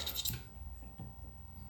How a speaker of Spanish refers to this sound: Mientras estaba lijando mi... Estoy sacando toda la pintura de mi tijerita.